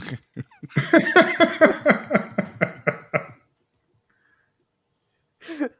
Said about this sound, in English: You put him into a coughing fit just from laughing.